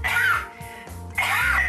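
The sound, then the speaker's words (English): Two loud coughs separated by a short pause, each a harsh, rasping burst with a throaty edge, heard on their own with no talking. “I coughed.”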